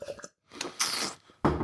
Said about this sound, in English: Sorry, I just needed a sip of water.